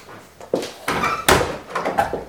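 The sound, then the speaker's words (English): A front door is handled and pulled shut with a firm thud by a person going outside, followed by a rattle of the latch and some shuffling movement. “Right, so I'm going to go out through the front door to make sure I can't hear what you're saying.”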